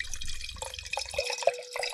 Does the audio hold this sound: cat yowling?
no